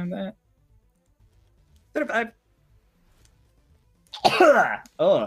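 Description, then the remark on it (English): A single loud sneeze bursts out after a few brief vocal sounds separated by quiet pauses, followed by another short vocal sound. “Bless you straight.”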